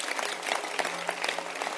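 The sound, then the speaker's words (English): An audience at a gathering of pastors breaks into applause, many hands clapping in a dense, steady patter with sharper individual claps popping out, holding an even loudness throughout the short burst. “I mean, I think you can clap your hands for this.”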